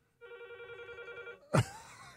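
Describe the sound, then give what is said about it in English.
A telephone in a studio rings once in a warbling, trilling burst lasting about a second, clear, followed by a sharp clunk as if the handset is picked up. “We have the phones on in here.”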